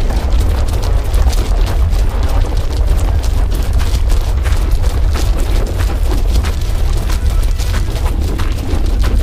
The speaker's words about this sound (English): That explosion compromised the mine. We need to beat feet before it caves in.